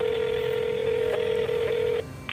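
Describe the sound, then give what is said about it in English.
Electronic telephone tones as a man phones a pizza shop: a steady, clear tone holds for about two seconds, broken by a few short keypad beeps before it stops. No one speaks. “So he asks around, he Googles around, and then he finally picks up the phone.”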